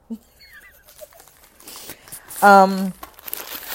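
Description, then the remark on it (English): A chip bag is opened, crinkling and rustling in irregular bursts of crackly plastic noise, with a brief, loud, voiced tone sounding partway through before the crinkling resumes. “Okay, I'm opening chips.”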